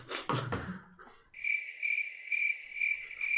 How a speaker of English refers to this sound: please insert a cricket joke in sound.